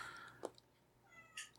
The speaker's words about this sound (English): No, it's a different cat that broke into my house.